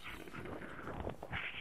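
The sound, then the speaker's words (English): A noisy slurping sip lasting under two seconds, a breathy, hissing draw of liquid with a few wet clicks and a louder gulp-like burst at the end. No talking. “Alright, sip time.”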